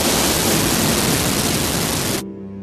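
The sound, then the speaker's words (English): Loud, dense radio static hisses steadily across the whole band for about two seconds, then cuts off abruptly, leaving a faint low hum behind. “There was an excited barrage of German that turned desperate when the static started drowning him out.”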